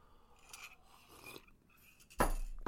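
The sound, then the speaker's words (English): Soft rustling and faint cup handling, then a sudden loud, airy slurp of hot herbal tea that carries on to the end. No one speaks. “All right, I have to take a sip because I'm excited about my beverage du jour today.”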